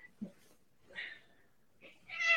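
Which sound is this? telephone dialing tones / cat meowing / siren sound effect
cat meowing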